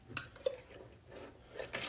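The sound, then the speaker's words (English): A metal lid clinks onto a container holding a shea butter mixture with a sharp clack and a brief ringing ping, followed by a soft grinding scrape as it is twisted down to a tight seal so no water gets in. No one speaks. “All right, now let's get our metal top on.”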